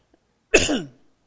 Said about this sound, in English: Sorry, my voice is changing. I've had this COVID cough going on for months.